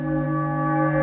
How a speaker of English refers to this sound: And now, flip the church bell around, and the church bell will also be backwards.